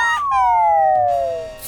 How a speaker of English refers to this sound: Woohoo! I meant to do that. Are you always waiting in the trees above us for someone to say your name so you can come crashing down?